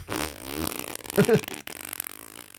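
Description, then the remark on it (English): A voice does a drawn-out, buzzing fart imitation to mimic brown noise, sputtering for over a second before a brief break and a rougher tail, moderately loud with no other sounds. “Is it like farting constantly? Yeah. It's just one long...”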